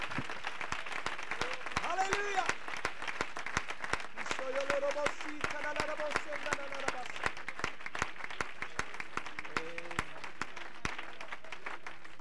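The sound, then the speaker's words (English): A church audience applauds in a hand clap of praise to the Lord after a prayer, with dense, sustained hand clapping throughout, steady and fairly loud, while voices call out and cheer over the clapping. “Let's give the Lord one more big hand clap of praise.”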